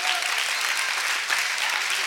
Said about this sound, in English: Don't ever be afraid to clap your hands in this house.